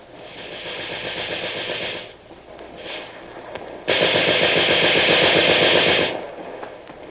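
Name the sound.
gunfire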